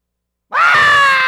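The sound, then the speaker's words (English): After a brief silence, a single voice bursts into a loud, sustained scream, mimicking excited congregants shouting; the cry is strained and steady, holding for just under a second. “They're too busy screaming.”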